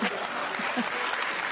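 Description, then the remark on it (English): Steady applause from an audience, a dense, even crackle of many hands clapping at once that holds at a fairly loud level throughout, with no break or fade. “It's a wonderful line and a great applause break.”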